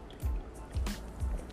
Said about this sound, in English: I will say that I am drinking a bang right now. Let me just take a sip.